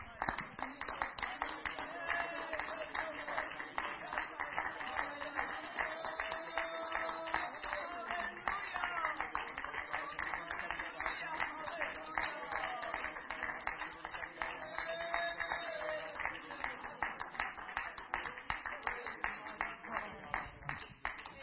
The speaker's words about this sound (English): If we could just clap our hands to the Lord.